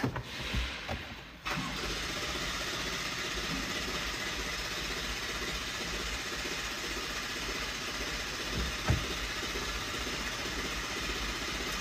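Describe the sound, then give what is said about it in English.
After a brief pause with a few clunks, the engine of a truck that was towed in because it won't start cranks nonstop for about ten seconds, a loud, steady churning that never catches and fires. “This truck was towed here because it won't start.”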